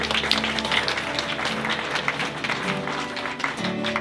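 A crowd applauds steadily, many hands clapping in a dense, continuous patter at an even moderate loudness for a few seconds, with a faint murmur of voices underneath.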